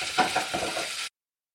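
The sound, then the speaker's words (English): Shrimp and gravy sizzle with a steady, bright hiss as the remaining stock is stirred in, with about four soft scraping stirs in a loose rhythm, cooking until the gravy turns smooth and thick, before the sound cuts off abruptly after about a second. “Stir in the remaining quarter cup of stock and cook, stirring until the shrimp gravy is smooth and thick.”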